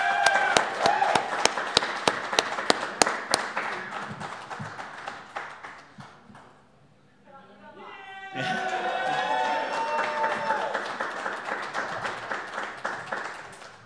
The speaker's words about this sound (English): I was just anticipating the round of applause was going to linger longer. Yeah. That's what I was thinking too, Amy. I wanted him to give it up for you guys.